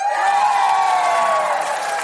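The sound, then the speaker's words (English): A crowd cheers loudly and steadily, a sustained roar of many voices with shouts and whoops blended together, holding at full strength for the whole two seconds, an audience cheering for Susan Calman, who is doing Strictly. “Give us a cheer if you're going to vote for Susan.”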